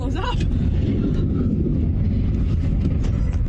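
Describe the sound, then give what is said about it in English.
A train derailing: a loud, steady roar of heavy rumbling and grinding metal fills the whole stretch, with a brief wavering squeal at the very start. “Now the train's derailing.”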